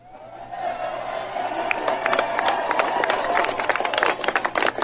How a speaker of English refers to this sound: By the way, there's hundreds of people on the stage. There's four guys clapping, and three of them are with the Secret Service.